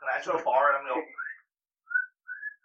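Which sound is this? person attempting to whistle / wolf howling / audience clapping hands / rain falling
person attempting to whistle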